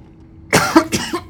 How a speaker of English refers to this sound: Still got my cough, too. Yeah, can't get rid of the cough.